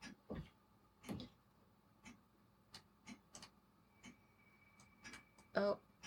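A clock ticks softly in a video game, sharp clicks arriving at a steady pace, with a faint tone and some louder rustling near the end.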